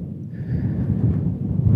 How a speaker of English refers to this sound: It's about 4:30 in the morning here these days. Bit windy, as you might be able to hear through the microphone. Very fresh.